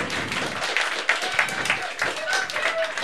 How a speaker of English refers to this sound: That's applause for all of us, not just... No, I know.